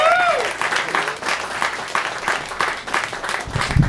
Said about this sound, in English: You guys, give a round of applause for the very, very funny, my dear friend